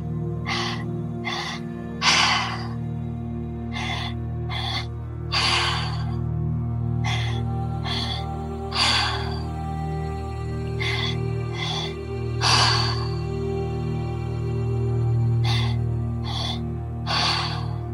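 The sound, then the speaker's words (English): Rhythmic, forceful breaths repeat steadily in a guided breathing exercise, with quick inhale-exhale bursts over a low sustained musical drone. No one speaks. “Keep breathing and following your own rhythm.”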